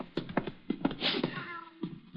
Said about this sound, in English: Here's your cat.